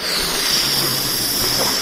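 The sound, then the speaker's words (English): A balloon being inflated, the audio file attached to a three-panel Overwatch comic of Soldier 76: a steady, unbroken hiss of rushing air with a bright, high-pitched edge, holding an even loudness for about two seconds with no voices. “That's just a balloon inflating, and at the end it says, powered up.”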